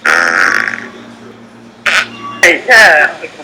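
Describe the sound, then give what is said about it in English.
A harsh coughing fit: three or four rough bursts in quick succession, preceded by a strained, throaty vocal sound and a short pause. “Cough attack.”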